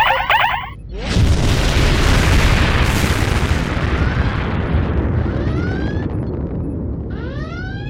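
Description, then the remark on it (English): After a brief electronic warble, a massive roaring blast erupts and rumbles on continuously, like torpedo explosions and artillery fire in a comic space battle against the Borg, with high sweeping sci-fi zaps streaking over it toward the end. “Return fire! All your torpedoes, full spread! Target their speakers!”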